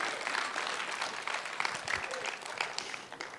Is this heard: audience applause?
yes